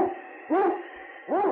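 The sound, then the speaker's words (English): Yukon King, a husky sled dog and lead dog, barks in loud, yelping bursts that rise and fall in pitch, two clear barks spaced under a second apart over a faint steady hiss, with no talking, breaking the trail for Sergeant Preston of the Northwest Mounted Police. “It's Yukon King, swiftest and strongest lead dog of the Northwest, breaking the trail for Sergeant Preston of the Northwest Mounted Police in his relentless pursuit of lawbreakers.”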